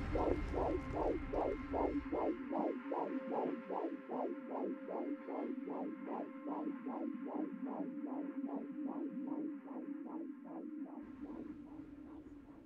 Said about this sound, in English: The silence, which had been deafening for so long, was about to end with the sound of a heartbeat.